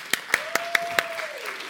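Several sharp hand claps ring out in a quick, even rhythm, about five in a row, then give way to a quieter, diffuse patter of applause in a room.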